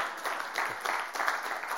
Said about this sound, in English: You want to clap, clap, or don't clap.